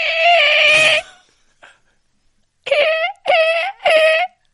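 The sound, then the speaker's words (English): A person squeals in a high, harmonic voice imitating a dolphin: one sustained cry, a pause, then three short rising chirps in quick succession, loud and without other talk. “Best dolphin noise.”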